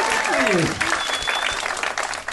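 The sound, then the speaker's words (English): An audience applauds after a happy birthday wish, with dense, steady clapping that holds at a fairly loud level throughout, with a brief falling whoop or cheer near the start. “No, so, you say birthday, people applaud.”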